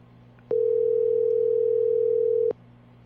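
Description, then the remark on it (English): A steady electronic telephone tone sounds for about two seconds, starting and stopping abruptly over a faint low hum, like a call being placed. “I'm going to get him on the phone right now, actually.”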